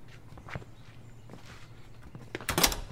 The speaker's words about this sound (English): Shut the door.